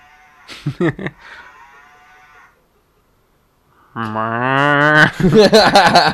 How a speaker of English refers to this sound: That was the pupper's moo moo. Get cowed upon.